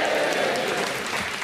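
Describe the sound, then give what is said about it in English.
A studio audience at a stand-up comedy show bursts into sustained applause and cheering for the introduction of a big book of rants, a dense, steady wash of clapping that fills the whole moment at a fairly loud level. “Give it a cheer, there it is!”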